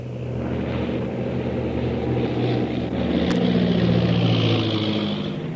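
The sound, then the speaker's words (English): A propeller airplane engine drones steadily and loudly throughout, its low rumbling pitch shifting slightly as the plane banks to come in for a landing from the other side, with a brief sharp click partway through and no voices. “I'll bank the plane and come in from the other side.”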